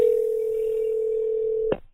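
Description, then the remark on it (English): A single steady electronic ringback tone hums for almost two seconds, loud as if through a phone receiver, during a call back to an unknown number, then cuts off abruptly with a faint click. No one speaks. “And I don't know this number, so we call it back thinking it's James. And this is what happens.”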